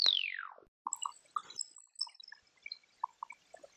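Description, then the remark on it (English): A loud electronic chirp sweeps steeply downward in pitch, then gives way to a scattered run of short, quieter blips and plinks: sonified millisecond-long radio pulsar bursts showing the characteristic dispersion sweep. “FRBs last milliseconds and display a characteristic dispersion sweep of radio pulsars, like these.”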